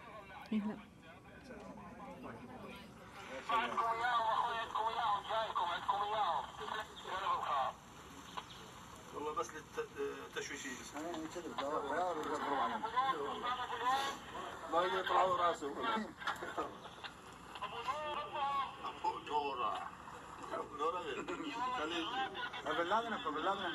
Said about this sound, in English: I just realized I had this on my phone, so I thought, if we're quiet enough, I'll play this. We were actually close enough that they were picking up the radio transmissions of ISIS.